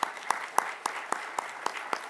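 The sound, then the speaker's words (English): An audience applauds, a steady wash of clapping with sharper claps landing in a regular beat, roughly four per second, at a moderate level with no voices. “Y'all give him another round of applause.”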